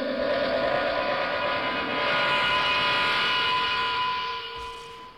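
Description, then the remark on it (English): A spaceship's engine roars with a steady, humming drone, swells briefly louder, then begins to fade as it flies off. No voices are heard. “The Foxes must have a ship in orbit, an escape plan.”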